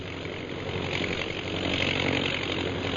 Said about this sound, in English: Let's see, how many of the planes are there? 1, 2, 4, 6, 8, 10. 10 bombing planes, eh?